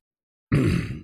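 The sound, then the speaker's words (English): A single loud, low, rumbling burp from someone drinking White Claw hard seltzer bursts out after a moment of silence, lasting about half a second before trailing off. No one speaks. “Just makes me burp a lot.”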